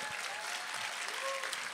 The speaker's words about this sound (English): And my mom, everybody clap for my mom right here in the front row.